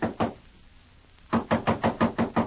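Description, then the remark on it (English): Knocking on a wooden door: two quick raps, a short pause, then a longer run of firm, evenly spaced knocks, fairly loud with no voices. “Go on, knock. When you get tired knocking, walk into some lead.”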